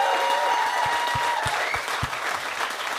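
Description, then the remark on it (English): Steady, dense audience applause, given as another round of applause for a woman, fills the whole stretch, a broad rush of many hands clapping at an even loudness, with a few sharper individual claps poking through. “Give her another round of applause there.”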